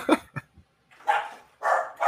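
dog barking

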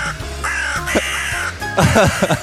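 crow cawing

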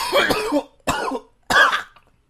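coughing

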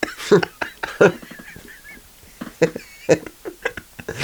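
flamingos honking

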